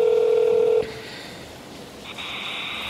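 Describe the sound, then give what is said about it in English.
Phone tones, probably a number being dialed: a steady low beep holds for under a second, then a stretch of soft hiss before a higher, sustained electronic tone comes in. No one speaks. “After he left, I called Brent and explained everything.”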